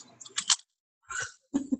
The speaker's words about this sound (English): You IO kittens have some sort of sound fetish. Here's some crunching of jalapeno kettle chips.